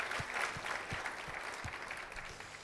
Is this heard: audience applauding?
yes